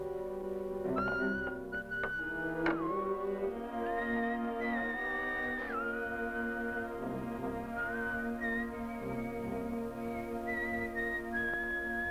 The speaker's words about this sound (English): Up in the belfry, Clint starts to climb out. In fact, he's half out when he hears someone whistling "My Darling Clementine."